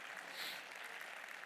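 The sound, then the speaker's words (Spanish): An audience at a church service breaks into sustained applause for the Lord, a dense, steady wash of many hands clapping at once with no pauses and no voices over it. “Dele un aplauso al Señor, porque de Él es la gloria.”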